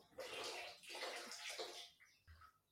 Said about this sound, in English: My tap's just running. What are you splashing about in the bath?